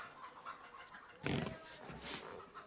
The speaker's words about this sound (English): I hear a chicken. Can I go try and wrestle that while he's messing with the guards?